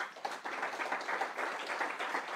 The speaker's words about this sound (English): Well, thank you to the panelists for some really interesting insight into domestic emissions. But a round of applause for our panelists.